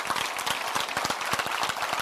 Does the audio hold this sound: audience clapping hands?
yes